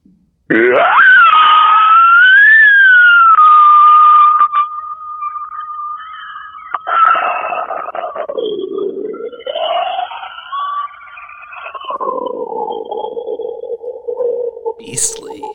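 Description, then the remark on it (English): A voice imitates the eerie, drawn-out pod scream of Donald Sutherland from Invasion of the Body Snatchers: a long wavering wail that starts loud and high, then slides down and rises again over about fifteen seconds, ending with a brief crackle. “That was a call from Donald Sutherland from Invasion of the Body Snatchers.”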